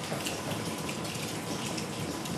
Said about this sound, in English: It sounds like it's hailing, but the water is coming through. We're in a tunnel. This is the main road, our straight road in pit terms.